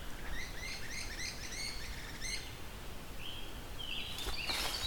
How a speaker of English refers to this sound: We've got, I think those are kingbirds making that sound. Not sure though. Oh no, great crested flycatchers. That's what makes that sound. Kind of a sound you don't hear often. You have to encounter a couple of them.